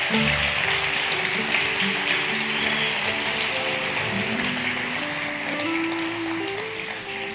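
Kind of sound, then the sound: crowd, audience applause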